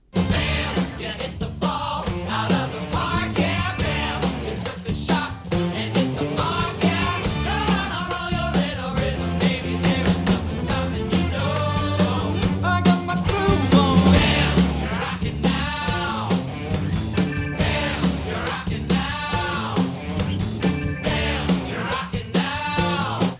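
A lively production number from the stage musical Mrs. Doubtfire plays loudly and steadily, with a lead voice singing sweeping, bending melodic lines over a full, busy band and a driving beat throughout.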